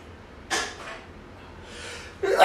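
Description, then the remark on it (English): A sharp, breathy sneeze bursts out, followed a moment later by another loud, hissing burst as a second sneeze begins. No one talks. “Thank you. Double time.”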